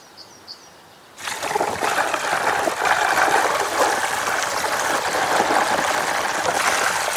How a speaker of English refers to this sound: The amount of cement required is extraordinary. For 3 days, they kept pouring, until 10 tons of cement had disappeared down the tubes.